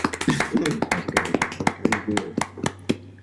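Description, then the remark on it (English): A short burst of hand clapping: a quick, uneven run of sharp, crisp claps lasting a few seconds, with voices murmuring underneath and a steady low hum in the background. “Round of applause.”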